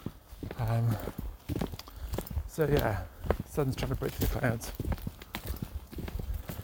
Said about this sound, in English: But we stomp on through the woods. Dog walkers in unison.